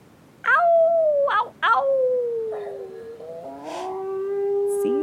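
Mrs. Castro's beagle, Lancelot, howls at night in long, drawn-out, wavering cries. A few rising yelps start it off, then a sustained howl carries on, with a second howling voice overlapping near the end.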